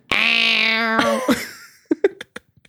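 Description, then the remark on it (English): A person imitates a male house cat's meow with one drawn-out, raspy, crusty-sounding meow lasting about a second, loud, followed by a few short, choppy vocal bursts. “And he's got a crusty little meow.”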